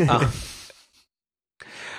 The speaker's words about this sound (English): Pause for yawns.